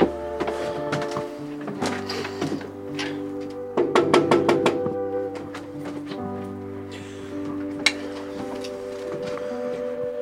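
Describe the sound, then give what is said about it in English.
A quick series of about six sharp knocks on the front door of a house in Massachusetts, evenly spaced and fairly loud, sounding over a steady bed of sustained musical tones. “Shall we knock on the door?”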